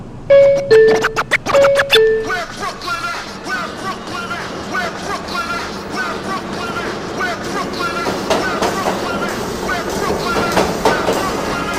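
subway express train running

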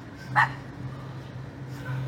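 dogs barking

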